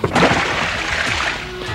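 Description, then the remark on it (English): A quick splash of water thrown onto a person in one burst, then a short wet slosh and spatter that fades over about two seconds, moderately loud. “Matt douses him with some water”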